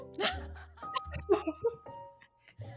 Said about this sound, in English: Sorry, I just burped.